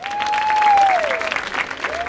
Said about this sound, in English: Thanks very much for that entirely undeserved applause.